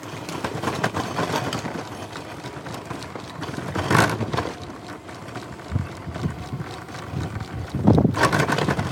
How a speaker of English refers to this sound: That's me rolling on the sidewalks of Madrid with my wheelchair. And despite the sound, or maybe because of it, we are giving it 3.5 stars.